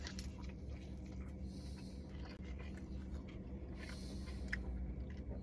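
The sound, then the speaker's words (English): Steady chewing with soft wet crunches and small clicks as someone eats a meal that includes freshly made chips with salsa, a low hum underneath and no talking. “We're basically vegan after this meal is what I'm trying to say over here.”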